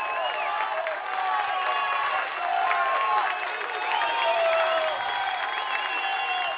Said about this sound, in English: And it is third down and 5 yards for Mount Carmel at about the 15-yard line. And it is, as you can hear, this prep crowd erupting, hoping to get behind this team.